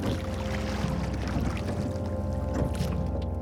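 A ferryman's boat being rowed across the dark, fetid water of the river Styx, with soft splashes and lapping over a steady, deep rumbling drone that fills the background. No one speaks.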